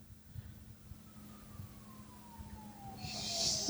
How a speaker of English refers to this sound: What is that noise? I've got it turned up way loud. Oh, it's like a police siren, I think.